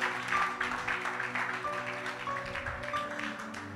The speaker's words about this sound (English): If you've been blessed today, can you just raise your hands and put your hands together and glorify God? I don't understand this clapping in slow motion.